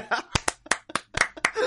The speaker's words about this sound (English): I think that, we first off, we deserve a round of applause.